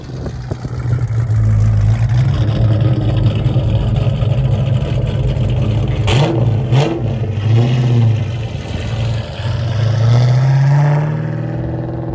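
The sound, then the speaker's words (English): A loud, deep V8 engine of a Mustang idles with a burbling rumble through small exhaust tips, then revs sharply a couple of times around the midpoint before settling back into a throaty idle. No one speaks. “You know, you're like, how can so much noise be coming out of such small exhaust tips?”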